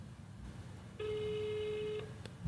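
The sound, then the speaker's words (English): A single steady, buzzy ringback tone on an outgoing phone call to an escort lasts about a second over a low background rumble, followed by a faint click. “Oh, it's a broad ringtone.”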